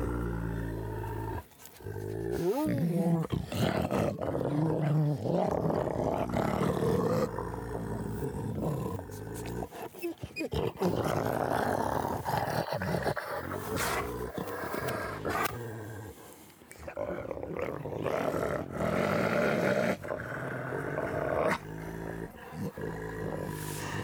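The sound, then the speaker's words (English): Wolves at a wolf park in Germany growl and snarl at each other, a loud, rough, nearly continuous squabble of overlapping snarls with a few brief pauses. “wolf park, Germany”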